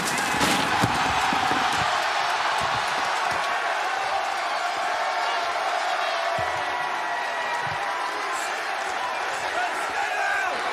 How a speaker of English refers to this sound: Hangman just powerbombed Swerve through our announce desk. He's screaming, stay down at Swerve. Screaming, stay down. Swerve's not going to stay down unless he can't get up.